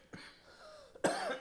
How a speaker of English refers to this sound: I'm getting these bad coughing fits. I apologize, listeners. Hopefully I wasn't wheezing throughout the entire pod.